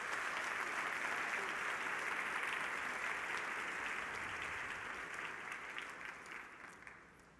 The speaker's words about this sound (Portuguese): Amém? Dê um aplauso ao nome do Senhor Jesus.